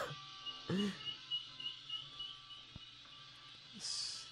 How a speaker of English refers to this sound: Ducks.